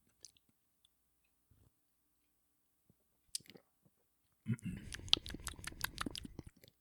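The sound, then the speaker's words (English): A few soft sips and mouth clicks in near silence, then a loud burst of wet, rapidly pulsing bubbling as someone gargles a mouthful of beer for about two seconds while tasting it for a beer review. “Very nice gargle job.”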